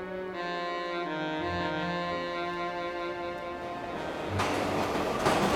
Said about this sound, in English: The train vomits Knox and a bellyful of other passengers onto the platform at Grand Central.